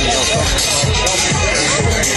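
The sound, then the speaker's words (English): Dense, steady babble of many voices chattering at once, a constant loud murmur of a concert crowd on the VIP hill in Atlanta, with no single voice standing out. “So here we go now through the crowd.”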